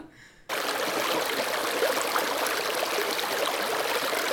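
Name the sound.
water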